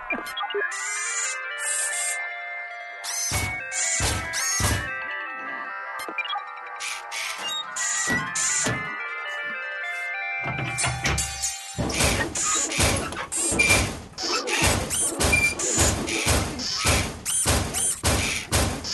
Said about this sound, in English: And there's a song that literally starts with two robots having sex. But it's just these two machines that are just like, like crashing into each other.